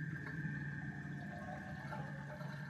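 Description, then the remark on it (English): A steady, unbroken gurgle and rush of water draining from a full soaking tub in a bathroom, fairly quiet and even, with a low hum running underneath and no voices. “The constant noise of water slowly draining from the soaking tub in our bathroom could be heard.”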